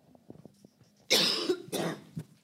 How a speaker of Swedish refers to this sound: Jag höll min hosta nästan hela vägen.